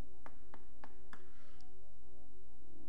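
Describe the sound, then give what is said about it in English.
Four evenly spaced knocks on a door, crisp, followed by a short quiet stretch with faint background hum. “And so there's a knock on the door.”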